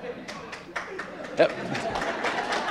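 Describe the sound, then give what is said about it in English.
An audience applauding, with a steady wash of overlapping claps and a few sharper individual ones standing out, mixed with murmuring crowd voices throughout. “I don't know why we're applauding.”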